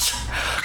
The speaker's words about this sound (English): Gesundheit.